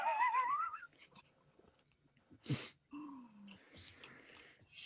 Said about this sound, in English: Long sip there as we Montreal's Jillian Dempsey.